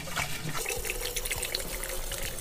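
Rum pours steadily into a cocktail for a couple of seconds, a continuous splashy trickle with faint glugging, with no voices over it.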